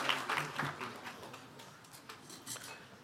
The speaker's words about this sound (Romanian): And just to see how many fathers we have, would you ladies be so kind to have a seat and all the fathers to remain standing. Haideți să îi aplaudăm și să dorim ca Domnul să-i binecuvinteze.